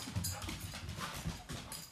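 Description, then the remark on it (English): Quick, rhythmic clattering of paws on a hard floor as a dog runs back from the kitchen to the living room, the light tapping steps running together in an uneven patter with no voices. “He just pretended like he wasn't trying to go into the kitchen, so he ran back to the living room.”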